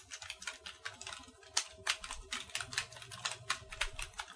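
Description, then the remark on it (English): Fast, uneven clatter of a man typing on a computer keyboard found in the trash, fairly quiet, with a steady run of clicks and no voices. “He found a keyboard in trash, ladies and gentlemen.”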